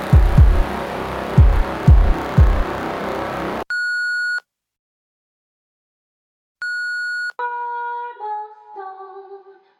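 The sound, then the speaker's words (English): After a few seconds of low, rumbling thumps, a steady electronic answering-machine beep sounds twice, separated by a pause, followed by a brief run of stepped melodic tones. “I'm not here to take your call right now, so please leave a message after the beep and I'll get back to you as soon as I can.”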